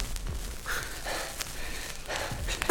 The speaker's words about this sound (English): There's heavy breathing.